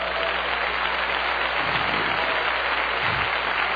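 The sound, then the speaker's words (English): A crowd of people claps their hands together in a dense, steady patter that holds at an even loudness for a few seconds, with no voices standing out. “Oh, clap your hands, somebody.”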